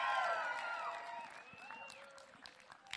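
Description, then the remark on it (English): A crowd at a graduation event at Abbott Loop Community Park applauds the graduates with scattered claps while voices whoop and cheer loudly at first, the cheering fading as the clapping carries on. “Come on, give it up for the graduates again.”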